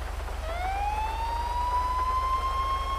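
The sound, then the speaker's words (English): The siren of a Lamborghini Aventador police car in a video game starts its wail, rising in pitch and then holding a loud, steady tone over a low, pulsing engine rumble, with no talking. “Hey, there's a Lamborghini Aventador police car.”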